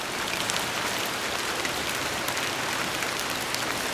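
Steady rain pattering on a road on a quiet night, a dense, even hiss of countless small drops with faint crackles, continuous, with no voices.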